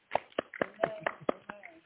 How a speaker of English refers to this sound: Amen. Amen. Come on and clap your hands for Jesus.